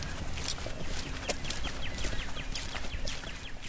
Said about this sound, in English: So we can just, like, go, oh, what's that? Like, that is a white-throated sparrow.